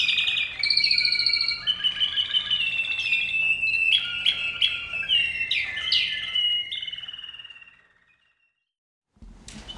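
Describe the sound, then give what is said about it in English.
A canary sings a long, rapid, varied song of trills and chirps, bright, fading out near the end before a brief low thump. “Some of these birds, it's just like they create the song, but it's never the same. And they'll go slower and faster.”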